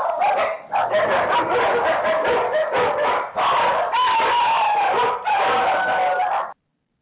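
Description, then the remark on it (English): Several dogs bark loudly and continuously, overlapping in a noisy chorus, with what sounds like a rooster crowing mixed in. No one speaks. “It's a little bit early, but we'll go ahead because the dogs have planned it for us.”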